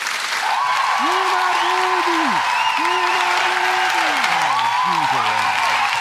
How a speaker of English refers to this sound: Listen, hold your applause. I don't want anybody to really, like, no, please, no.